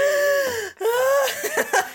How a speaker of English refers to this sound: … starts like breathing really hard